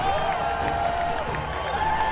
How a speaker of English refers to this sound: Now the Royals are down to their last strike. The A's bench jumping up with every pitch. The fans on their feet, cheering with every pitch from Beard.